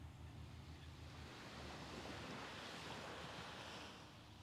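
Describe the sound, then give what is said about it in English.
Ocean waves wash steadily onto a beach, a broad continuous rush of surf that swells slightly in the middle, with some low wind rumble and no voices. “Notice how connected you may feel, even more so than in your usual space and place, allowing you to step out of your body and allowing your mind to focus in on the cadence of the waves, matching that cadence of your breath.”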